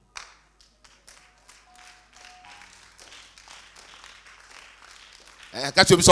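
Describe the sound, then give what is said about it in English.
A crowd claps in a loose, uneven patter of soft, scattered handclaps for several seconds, then a loud voice abruptly breaks in over them at the end. “If you are clapping, clap well, because you better clap and get something and not sit there and get nothing.”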